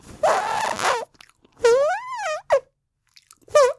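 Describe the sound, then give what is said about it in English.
Mouth fart noises blown into a microphone: a loud sputtering burst, then a longer buzzy one that warbles up and down in pitch, a quick pop and one last short buzz. “I'm making little farting noises into the microphone.”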